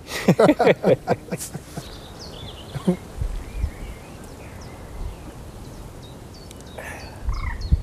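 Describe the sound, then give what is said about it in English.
A toad croaks in the wilderness in a quick run of raspy pulses, then falls quiet while faint bird chirps and insect-like buzzing continue in the outdoor background. “What's that? A toad.”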